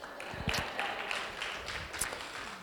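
An audience claps steadily for a few seconds, a dense patter of many hands with a few sharper claps standing out, fairly soft overall.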